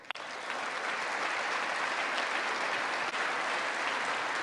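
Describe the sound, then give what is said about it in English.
A single sharp clap opens, then a large crowd's applause swells in almost immediately and holds steady and dense, a continuous wash of clapping with no voices standing out. “It's like there's one person leading the clapping.”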